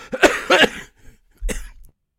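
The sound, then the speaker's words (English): Three sharp coughs from one person: two quick ones in a row, a brief pause, then a third, slightly rougher cough. No talking in between. “I can mute you over here if you get into a big coughing break.”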